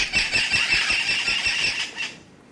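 Loud, harsh squawks of parrots, 11-inch, 10-ounce birds with powdery blue flight feathers, flying into the rainforest canopy in early morning light, pile up into a continuous shrill chorus for about two seconds, with faint low thumps beneath, then abruptly drop away to near quiet.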